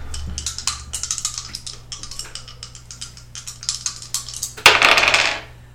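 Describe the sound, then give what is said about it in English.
Dice are rolled on power during a game, rattling and clattering in a quick run of hard, bright clicks, ending in a louder burst of tumbling before settling into quiet. No one speaks. “Okay, roll on power.”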